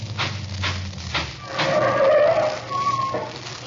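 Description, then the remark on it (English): A car engine rumbles low, then cuts out as brakes give a drawn-out squeal, the car pulling over and coming to a halt. No one speaks. “I'm stopping here for a minute.”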